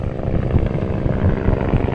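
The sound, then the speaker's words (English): A loud, steady roar of helicopters fills the air overhead as they work with firefighters to battle hot spots at the Santiago fire lines in a canyon, a dense low rumble with a rapid rhythmic throb from the rotors, continuous and without any voices. “Helicopters roar overhead, working with firefighters on the ground to battle hot spots, together trying to drown the flames and save what they can at the Santiago fire lines.”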